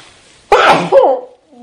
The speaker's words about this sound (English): Bless you. Thank you.